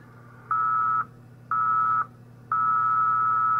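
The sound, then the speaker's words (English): Very slow QRSS Morse code at about half a word per minute, sending the call sign W5KUB: a steady mid-pitched tone keyed on and off, two half-second beeps with pauses, then a longer held tone, all over a faint low hum. “If you listen, that is very slow Morse code.”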